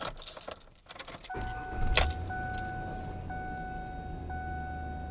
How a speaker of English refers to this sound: Well, I'll see how that did. I'm going to start up the engine. And hopefully check engine light will still be off here.